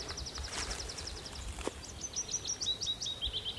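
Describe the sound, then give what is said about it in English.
A willow warbler sings a soft, descending cascade of sweet, liquid, dripping notes over a quiet hillside background with a faint low rumble. “There's a willow warbler there, cascading.”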